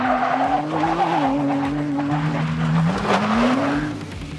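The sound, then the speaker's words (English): A Raptor truck's 3-liter twin-turbo V6 engine, making 418 horsepower, revs loudly, its deep droning pitch dipping and climbing again over a few seconds, with a rough, raspy edge and no voices. “Under the hood, you have a 3-liter twin turbo V6 that makes 418 horsepower, and it sounds pretty good.”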